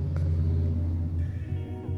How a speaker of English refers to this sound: Loudest truck ever.